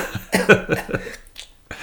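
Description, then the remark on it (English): A fit of several rapid, harsh coughs in quick succession after vaping, tapering off, followed by a brief breathy rasp near the end. “I mean, quick cough on the vape.”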